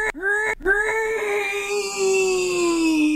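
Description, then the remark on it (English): A person imitates Godzilla's roar: two short, choppy starts, then a long, steady, high-pitched wailing screech held at full loudness until the end. “will you do your best impersonation? I don't know, impersonation or animalization of Godzilla? Like his roar, his scream, well, his yell.”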